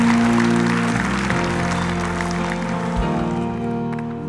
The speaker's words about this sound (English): Can you give the Lord a hand clap right now? Praise God, hallelujah.